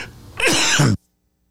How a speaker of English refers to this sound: Yeah. Bless you. Okay. Thank you.